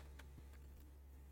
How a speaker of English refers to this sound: There we go. We have it in the chat. I was literally typing it in.